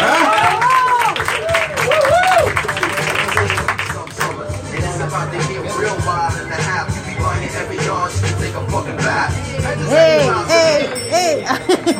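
A crowd applauds a performer introduced as a lyrical minister, steadily for about twelve seconds, a dense wash of clapping mixed with loud cheers and whoops that rise and fall, with no lull.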